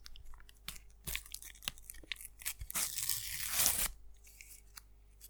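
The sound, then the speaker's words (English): A sticker pack being torn open: a few sharp crinkly pops, then a sustained, bright ripping rasp that swells for about a second before stopping, followed by faint rustling. No talking. “Okay, let's open up.”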